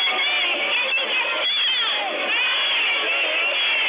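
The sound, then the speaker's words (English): A crowd of more than 500 protesters, addressed by Beto O'Rourke across the street from the NRA convention in downtown Houston, cheers and shouts continuously, a dense wall of many overlapping voices with scattered higher whoops rising above the steady roar for the whole stretch. “On Friday afternoon, Beto O'Rourke addressed a crowd of more than 500 protesters.”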